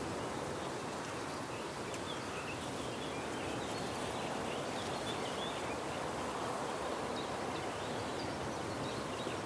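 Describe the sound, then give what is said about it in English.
A steady, dense buzz of great swarms of insects over a lake and reed bed with yellow flag irises, where swallows catch the insects, fills the air without pause, with faint bird chirps scattered over the top of an outdoor ambience. “And great swarms of insects.”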